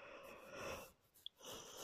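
yawn

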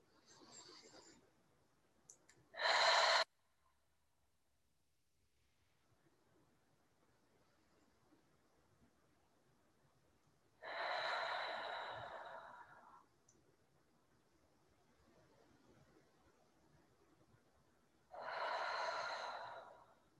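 deep breaths in nose

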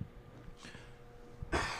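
cough

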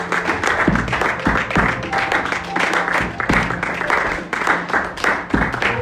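audience clapping

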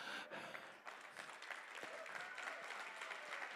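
audience clapping hands

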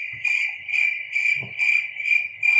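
crickets chirping sound effect

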